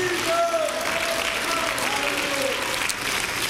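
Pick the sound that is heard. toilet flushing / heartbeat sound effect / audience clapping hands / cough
audience clapping hands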